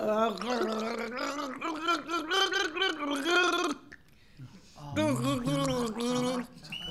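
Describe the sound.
Someone gargles a song melody as a clue in a team music quiz, the bubbling voice rising and falling through a tune for about four seconds, pausing briefly, then gargling the next phrase.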